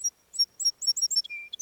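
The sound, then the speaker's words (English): A sparrow sings a quick, high-pitched song of bright repeated chirps, then a short sustained whistle and a final trill. It's clear, with no voices. “And so Little Bird sang her song.”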